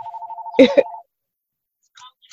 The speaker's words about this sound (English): Do you want to pause? If my phone is ringing, I'm sorry.